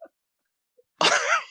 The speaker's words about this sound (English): Bless you.